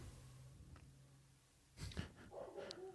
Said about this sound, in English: is barking at the neighbor dog.